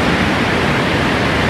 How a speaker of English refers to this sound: But if you're down in Andalusia and Malaga, sound of the rushing water down below.